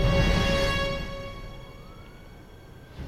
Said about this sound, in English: Man, is it weird that I miss hearing a police siren knowing it's for me? It is for you. For us. The scanner is filled with cops headed this way to deal with two costumed villains